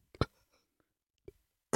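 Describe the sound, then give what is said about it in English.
A few short, muffled burps in otherwise quiet surroundings: a sharp one at the start, a small low gulp-like one later, then a louder, rougher burst at the end. “Sorry, I had to burp.”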